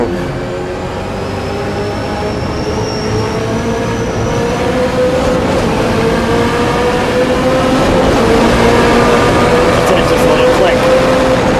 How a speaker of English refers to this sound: Just the video of the shift. You have the like 3 seconds of how that car shifts is what I was basically.